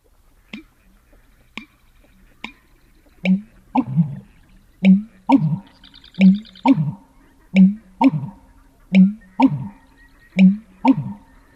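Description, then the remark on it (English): An American bittern's booming, gulping call: a few dry clicks, then a steady series of about ten deep, hollow pumping notes, evenly spaced and fairly loud, with no voices. “All About Birds describes it as gulps of a thirsty giant.”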